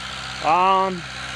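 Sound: tractor engine idling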